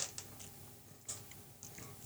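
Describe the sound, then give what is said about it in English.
Quiet clicking and clattering of six-sided dice (D6s) being gathered and rattled in a hand for a fireball damage roll, a few irregular bursts of small hard taps with a faint hum underneath and no voices. “Let's grab the right dice. Let's not grab the D8s. Let's grab the D6s.”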